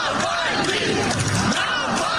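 A large crowd chants outside the funeral service of Russian opposition leader Alexei Navalny at a church near Moscow, many voices shouting his name together in a loud, continuous roar with a rising and falling cadence, filling the whole stretch.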